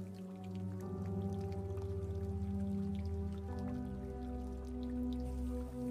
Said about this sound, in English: Notice a faint sound of running water in the distance.